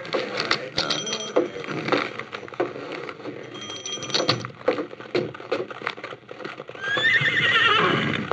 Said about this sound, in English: Here's my horses.